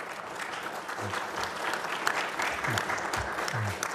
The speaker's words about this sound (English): Well, the applause from the witnesses don't count because they're just trying to get confirmed, but everybody else who applauded, thank you very much.